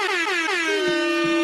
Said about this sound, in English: I've also always wanted to use that air horn. First time using it.